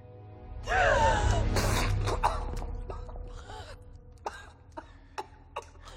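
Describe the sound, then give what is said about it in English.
Someone coughs up breathing fluid, starting with a loud, strained burst of choking, gasping coughs. It fades into ragged breathing and a few short, sharp sputters toward the end. “It's breathing fluid. Just let it get it out.”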